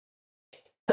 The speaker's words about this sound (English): I think I'm gonna sneeze, just FYI. Hang on, I don't want to make anyone jump. I'm looking at the lights, here it comes.